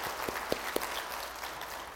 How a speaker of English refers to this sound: These graduates, they represent a great deal of hard work and prayers on behalf of mom and dad. So let's give them another hand of applause for a lifetime of hard work.